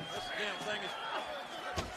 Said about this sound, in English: Alright, somebody take an unprotected chair shot to the head. Please. Right now.